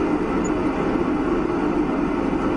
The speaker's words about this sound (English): Oh, wow. 30,000 feet in the air on a plane.